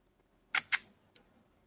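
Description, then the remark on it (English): The mechanical shutter of an early dual-stroke Leica M3 rangefinder camera fires: two crisp clicks in quick succession, then a faint lighter tick a moment later. “And now the shutter.”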